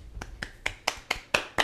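Seven quick hand claps in a steady, even rhythm, crisp, growing slightly louder toward the end, with no voices, given as a round of applause for a winning team.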